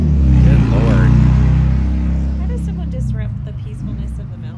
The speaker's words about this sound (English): It's so peaceful and quiet here, and then you got that. Yeah, riding a motorbike through it.